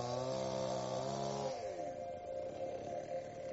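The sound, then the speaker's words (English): A chainsaw cuts through soft layered sedimentary rock at a fossil lake site, running with a steady, high buzzing whine, then its pitch sags and wavers midway as the blade bogs into the rock, grinding on continuously with no voices. “The rock is so soft that a chainsaw can cut through it.”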